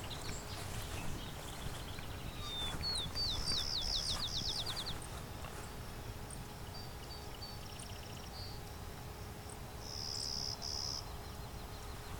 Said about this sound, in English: Oh, there's two of them. This bobolink is singing a lot, too. Here we go.